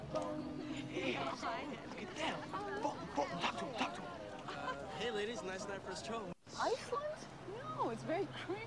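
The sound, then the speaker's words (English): A large crowd of people quack loudly in unison, imitating ducks, in the 'final quack' scene from the film Mighty Ducks D2, with overlapping nasal calls rolling on continuously, broken only by a split-second pause before the chorus resumes. “The final quack.”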